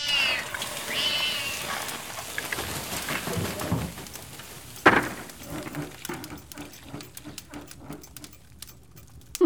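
cat yowling

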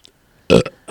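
burp

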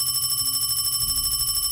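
telephone ringing

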